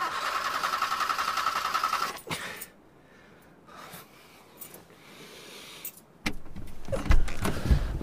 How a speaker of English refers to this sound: As I slowly regained consciousness, I saw the glass faces of the instruments were cracked and the needle of the temperature dial was stuck on red. The stalled engine wouldn't start.